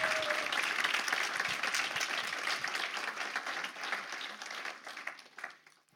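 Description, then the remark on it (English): An audience bursts into a dense, steady round of applause for a speaker who shared a journey of faith, many hands clapping together in a loud wash that holds for several seconds before thinning out and fading at the end. “Big round of applause.”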